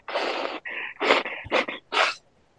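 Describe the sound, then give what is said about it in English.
Someone blows their nose in a series of about five harsh, breathy honks, each a short burst of rushing air with brief pauses between, with no talking. “Excuse me, I'm going to blow my nose.”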